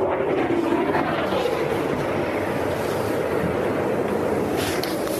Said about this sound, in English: That sounded like a fighter jet overhead.